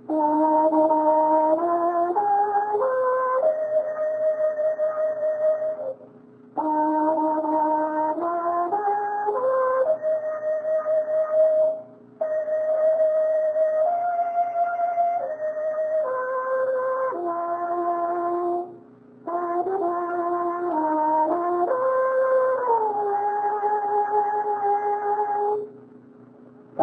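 A trumpet plays a slow, steady melody of held notes stepping up and down, in four long phrases separated by brief pauses, with no talking over it.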